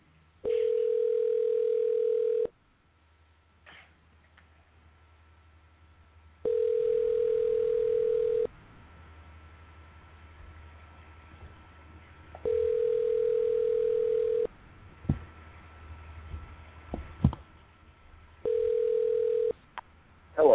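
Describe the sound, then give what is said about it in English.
A telephone line tone sounds in four steady two-second bursts separated by longer pauses as a call is placed to a cell phone, with faint background hiss between them and no one speaking. “But we're going to call a”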